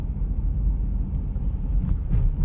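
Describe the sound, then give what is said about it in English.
Steady low rumble of a car driving straight with hands off the steering wheel after a wheel alignment, heard from inside the cabin, with constant road noise and a few faint clicks or bumps; no one speaks. “Car is driving straight now.”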